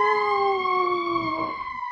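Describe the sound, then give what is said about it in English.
An emergency vehicle siren wails steadily outside, its harmonic tones sliding slowly downward as it passes by, fairly loud throughout with no talking over it. “Oh, there's a siren outside.”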